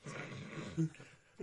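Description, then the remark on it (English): A phone ringtone made of dog-like growling, a low rumbling snarl with a short tonal blip midway and a brief yip at the end, lasting about a second and a half. “as long as you have awesome ringtones like that, we're fine with it”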